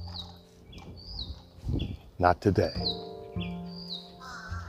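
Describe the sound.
Birds up above squawk and chirp outdoors: short, high chirps repeat throughout, and a pair of loud, harsh caws burst out midway. A man's voice speaks briefly underneath.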